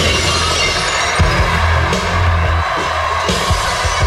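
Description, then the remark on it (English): Loud glass shattering, Stone Cold Steve Austin's wrestling entrance sound effect, crashes over a dense, roaring wall of arena crowd noise, with sharp impacts repeating several times across the few seconds. “Steve's Glass was the soundtrack to holy shit.”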